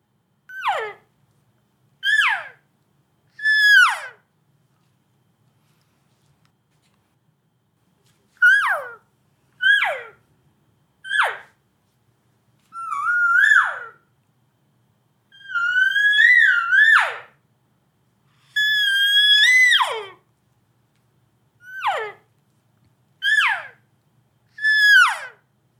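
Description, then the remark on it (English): A string of high, whiny elk cow calls blown on a game call, mixing several kinds of cow sounds: short descending mews in quick groups, then a few longer, wavering calls, each loud and separated by silence. “So this is like mixing in a few different kinds of cow sounds into what I would just call a little cow party.”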